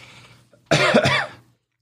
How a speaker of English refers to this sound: COVID cough. No. It sounded kind of COVID-y to me.